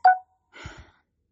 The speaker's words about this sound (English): I hate being interrupted by my phone. Anyway, the little jingle says I have an email, in case y'all are wondering.